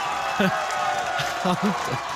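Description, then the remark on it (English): Fans cheering: a steady wash of crowd noise with a few short, raised shouts and whoops popping out over it, moderately loud throughout. “That was that good that the fans are cheering, bro.”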